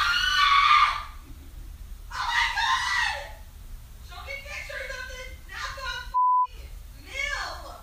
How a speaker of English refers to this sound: So she screamed. Like a blood curdling scream.